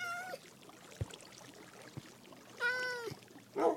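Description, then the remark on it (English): A cat meows three times: a short cry at the start, a longer drawn-out meow near the end, then a brief final one, with a couple of soft taps in between and no talking. “And the cats are new, right? We didn't used to have cats.”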